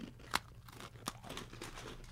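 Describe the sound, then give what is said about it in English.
Crunching as a crisp cookie is bitten and chewed, with a sharp snap near the start, another crack a second later, and a steady run of smaller crunches after. “Sounds like a nice snap. Yeah, mm-hmm. These are great. Crunchy.”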